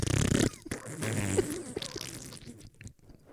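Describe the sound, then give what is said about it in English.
A voice makes a loud, sputtering wet fart noise with the mouth, starting in a burst and trailing off into smaller, juicy spluttering pops over a few seconds. “Felt a fart come on.”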